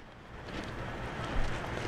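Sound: boat on the water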